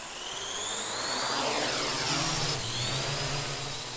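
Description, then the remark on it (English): A drone, launched to hover above a person for filming in the last light of day, gives a loud, steady mechanical buzz and high whine, its pitch shifting slightly as the motors adjust; no one speaks. “Alan would lead, and Greg launched the drone off above him, the drone hovering and making this crazy buzzing noise.”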